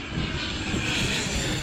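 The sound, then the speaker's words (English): A Canadair water-bombing propeller plane drones steadily overhead during a forest fire in the Gard, dropping water on burning trees, a loud, continuous engine roar with broad rumbling low end and a hiss across the highs, holding constant throughout with no voices. “Water-bearing planes, known as Canadairs, belch their loads onto the burning trees.”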